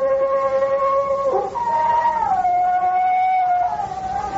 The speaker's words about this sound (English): What's that? Sound like a wolf. There ain't no wolves out here.